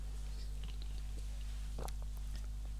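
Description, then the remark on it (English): A quick sip from a bottle of non-alcoholic Heineken beer during a taste test, a short wet slurp midway, set against a steady low electrical hum and a few faint mouth clicks and taps. No one speaks. “I need to sip it again. Hang on. Taste test.”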